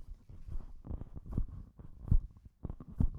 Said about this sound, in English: Let's do some handling noise. I'm going to shuffle the microphone back and forth between my hands.